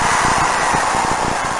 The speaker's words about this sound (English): Stupid Madden guy. Yeah, it crackles in the headphones. Sounds terrible. That's your Madden 94 crowd, folks.